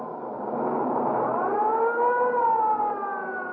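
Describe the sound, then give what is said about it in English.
An ambulance siren wails steadily and loudly as the ambulance responds to a call about a man run over by a streetcar at 8th and Hill Street, its tone swelling upward then easing back down in one long continuous sweep, with no voices over it. “The ambulance is on its way now and be here in 2 minutes or less.”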